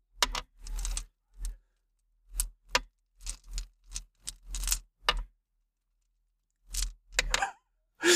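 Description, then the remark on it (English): Dice rattle and clatter across a hard surface in several quick bursts of sharp clicks, separated by short pauses, with no one talking. “I need more dice.”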